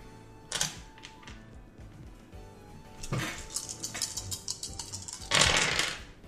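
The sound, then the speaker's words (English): Dice rolled for an acrobatics check clatter and roll across a tabletop in three sharp bursts of rattling, with scattered small clicks between them as they settle; no one speaks. “So start off roll another acrobatics for Melody for me.”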